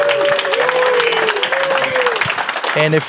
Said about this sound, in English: Wow. Give him an applause.